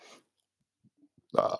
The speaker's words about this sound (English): Sorry, I had a burp.